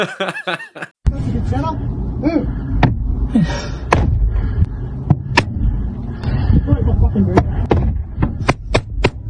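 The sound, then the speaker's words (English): A man in a road rage incident strikes an elderly couple's car with a boomerang again and again, each hit a sharp thwack at irregular intervals, while people talk and laugh in the background throughout. “In other road-related crimes, we saw a very well-built cooker, and well done him, attacking an elderly couple's car with a boomerang.”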